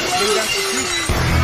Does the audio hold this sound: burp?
no